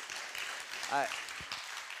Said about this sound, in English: I don't even know exactly what we're clapping for, but I think it's God